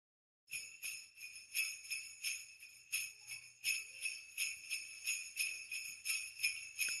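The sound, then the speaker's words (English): Bells jingle continuously in a steady, pulsing rhythm, swelling with each beat like sleigh bells in motion, bright, with no voices, in a Christmas recording made from a truck pulled over on the ice roads in midwinter. “There's a lot of bells.”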